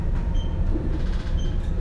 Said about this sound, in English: Seems quite a quiet journey. Doesn't seem too many people on the bus.